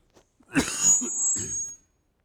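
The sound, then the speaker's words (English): A fairly loud burst of coughing and throat clearing: a sharp rough hack followed by a couple of shorter gravelly rasps, with no talking around it. “I think this is a bad thing to have with a cough.”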